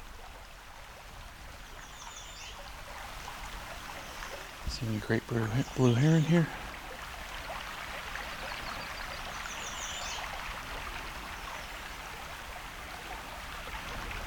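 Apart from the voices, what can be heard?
river water flowing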